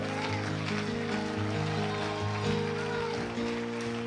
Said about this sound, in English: Can you clap your hands unto the Lord? For those of you that are excited, why don't you clap your hands a little louder?